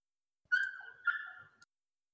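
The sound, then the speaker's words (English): A dog whimpers in two drawn-out, high whining cries, one right after the other, with no one talking over them. “This dog. Babysitting this dog is...”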